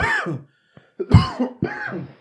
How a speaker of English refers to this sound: coughing through the mic.